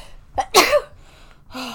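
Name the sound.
a sneeze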